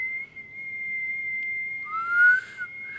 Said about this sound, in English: Whistle. How do you whistle?